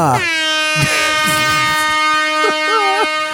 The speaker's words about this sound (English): That was distracting talk, so I can find this shit. Let me pull this damn air horn.